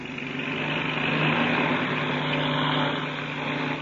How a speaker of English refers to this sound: As daybreak neared, the famous pilot and Chuck Ramsey climbed into the cockpits of the black two-seater and warmed up the engine. Then they start their takeoff.